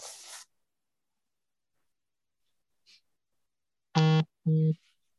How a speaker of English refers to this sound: No, we're on my phone and I keep getting messages.